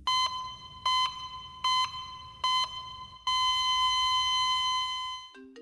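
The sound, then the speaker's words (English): A phone ringtone for an incoming call from Busy Phillips: four short electronic beeps in a quick rhythm, then one long sustained tone, ending with a brief lower note. Loud and with no voices. “Busy Phillips on the phone.”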